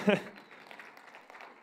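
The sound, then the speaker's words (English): A voice briefly trails off, then a church audience claps in a steady, diffuse patter, moderately loud and sustained for over a second, during worship on the last day of 2017. “So, yeah, you can clap for that if you want.”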